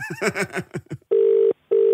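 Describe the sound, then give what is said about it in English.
An outgoing phone call to someone's mum: a quick run of short electronic beeps, then two steady, even burrs separated by a brief gap, loud with no talking. “Look, either you answer the questions or I'm just going to phone your mum.”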